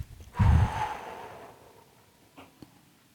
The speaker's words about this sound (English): One more breath in through your nose. And then out through your mouth.